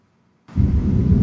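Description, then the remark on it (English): After a moment of silence, a loud, deep rumble of thunder from a rainstorm breaks in abruptly and keeps rolling, heavy in the low end, with no voices. “I can totally hear the rain coming through.”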